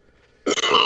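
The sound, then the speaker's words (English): A loud belch bursts out after a brief quiet moment, rough and gravelly, sustained for about half a second with a couple of short breaks in it. “If you're listening, Mags, I know you hate when they don't edit out when they belch, but that was for you, Mags.”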